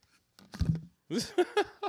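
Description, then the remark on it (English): A single deep, throaty gulp of a drink, followed by a few short voiced bursts like breathy exhales or murmurs. “It sounded like it was a bigger gulp than it really was, bro.”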